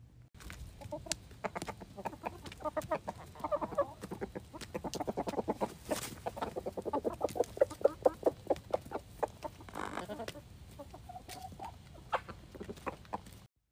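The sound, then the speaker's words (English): A flock of chickens eating old stale bread clucks and murmurs busily, with overlapping short calls and soft pecking clicks throughout; no one speaks. “Here's a recording of them all chowing down on old stale bread.”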